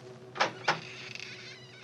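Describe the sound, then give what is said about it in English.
Two quick clicks as a door latch is lifted, followed by a faint, drawn-out high-pitched squeak of the door creaking open, quiet with no voices. “The door squeaked open protestingly.”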